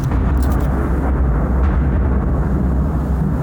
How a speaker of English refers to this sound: is Tuesday the 31st of May and the thunderstorms continue. I only managed to catch one loud crack.